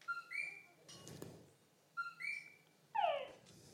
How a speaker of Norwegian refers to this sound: Og det høres som en dataspill-lyd. Ja, den dataspillen, dataspill-lyden, det en frosk som heter Tungara. Fordi han sier Tungara.